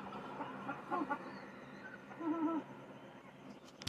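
A chicken sitting on top of a pit bull's head clucks in two short, warbling bursts, one early and one a little later, over a low background hum with no talking.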